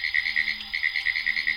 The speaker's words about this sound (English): The Apalachicola National Forest is the largest forest in Florida. And it's there in a boggy spot that these pine woods tree frogs lift their froggy voices in song.